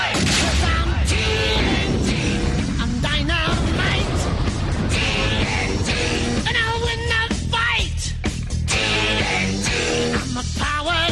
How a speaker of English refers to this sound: Ooh, some extra dynamite explosions for y'all.